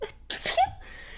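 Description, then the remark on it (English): A single sneeze: a quick sharp intake of breath followed by a bright, explosive burst that cuts off fast, then quiet. “Bless you.”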